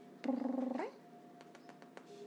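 A pet cat named Allie purrs in a brief, fluttering burst of about half a second that lifts in pitch at the end, followed by a few soft taps and quiet background noise.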